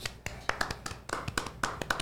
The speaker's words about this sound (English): Golf clap for Jed.